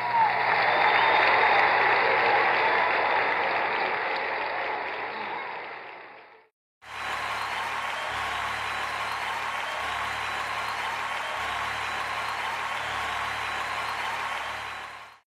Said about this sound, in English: Y'all can clap. I'm through now.